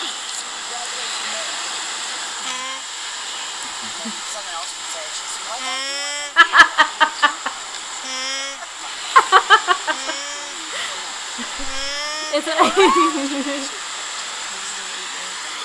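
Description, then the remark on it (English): Alpacas give three bursts of loud, pulsing, honk-like calls with wavering pitch, each a quick series of rough cries, set against a constant wind-like hiss. “And here are the alpaca sounds.”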